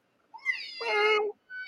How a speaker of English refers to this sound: Well, we can hear you meow.